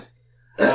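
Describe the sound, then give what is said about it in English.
A single loud sneeze bursts out suddenly after a moment of near silence, a sharp, breathy blast that holds strong until it is cut off. No one speaks. “I mean, bless you.”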